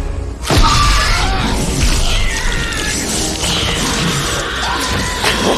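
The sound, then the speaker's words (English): A sudden loud crash gives way to several seconds of dense, violent bone crunching and thrashing, with shrill, wavering screams rising over the din. “Glad we get to leave in the bone crunching and screaming.”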